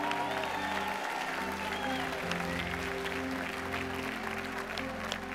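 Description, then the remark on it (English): Sustained applause from an audience cheering married couples after a wedding ceremony, a dense steady clatter of clapping with scattered cheers, holding at an even loudness for the whole stretch with a low hum underneath. “Come on, cheer on all these married couples.”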